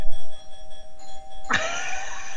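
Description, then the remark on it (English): An electronic doorbell chimes with steady, ringing tones, then a brighter second note strikes at about a second and a half and rings on, with no talking. “Let me go open the door for her.”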